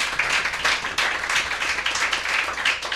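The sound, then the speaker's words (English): A crowd applauds steadily, many hands clapping in a dense, bright patter that stays loud and even throughout with no pauses. “So just give yourself another round of applause.”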